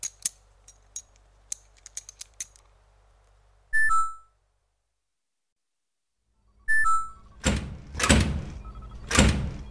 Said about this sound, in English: Anyway, your door won't close. You slammed it, didn't you? Do I look like the type to... Okay, fine. You got me. It'll just take a minute.